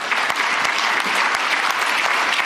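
Steady applause from a large audience fills the space, a dense wash of many hands clapping at once with a few sharper claps standing out, sustained and fairly loud with no voices on top.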